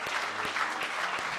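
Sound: audience hand clapping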